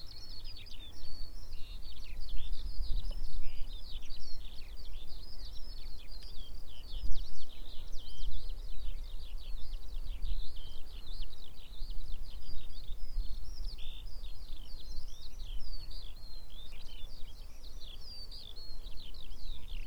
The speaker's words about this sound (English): I'm now walking through fields at Cobden, where I've had quite good success with bee orchids in the past. Those skylarks won't shut up.